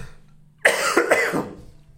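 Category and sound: human body sound, cough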